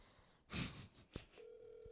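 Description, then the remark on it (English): A short rustling burst and a click, then a steady electronic ringback tone starts and holds, the sound of a phone call ringing out while waiting for someone to answer. “Pick up the phone.”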